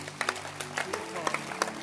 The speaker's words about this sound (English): Clap your hands for his life.